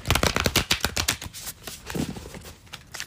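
A deck of cards being shuffled, a rapid flurry of crisp papery flicks and snaps lasting a few seconds, then trailing off into quieter rustling. No one speaks.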